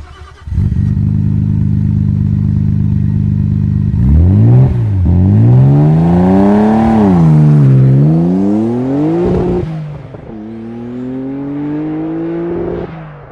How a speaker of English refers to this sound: And I happen to have a need for an RB26 engine, which I think is very hard to find, but really has a signature sound.